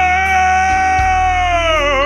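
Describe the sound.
A person lets out a loud, sustained roar in imitation of a rock singer, holding one rough, steady note for about two seconds before it wavers and breaks at the end.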